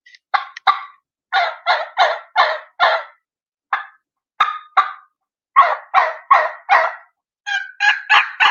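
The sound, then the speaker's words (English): Loud jake turkey yelps and deep clucks played on a turkey call, coming in rhythmic runs of four or five notes separated by short pauses, with no talking. “So I'll throw some Jake yelps out there, some deep clucks with it.”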